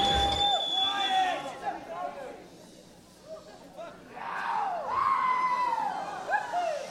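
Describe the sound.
A chattering, murmuring crowd is cut through by hissing shushes from fans trying to quiet it, with a few higher voices rising over the babble.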